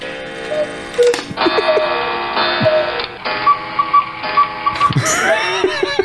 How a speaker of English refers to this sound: Another one of my aunts did, yeah. And, like, you can hear the cuckoo clock kick in. What the hell is this? That's exactly the noise it makes.